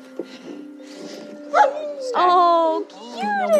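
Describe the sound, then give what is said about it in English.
Working search dogs from Canine Alert Search Teams, which search for cadavers and live people, whimper and give short, high yips and barks, their whining rising and falling in pitch over a few seconds, with faint background voices. “So let's meet the dogs.”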